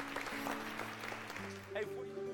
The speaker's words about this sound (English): Come on, can we applaud all that God's done today?